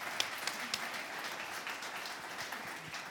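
An audience applauds steadily to thank a guest speaker, a dense, even patter of many hands clapping at once with a few sharper claps standing out, holding a constant level throughout with no voices.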